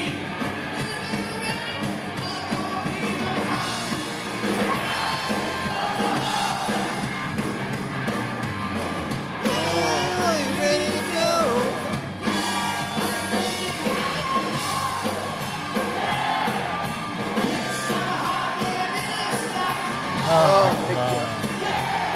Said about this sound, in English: Just let the crowd sing the whole thing.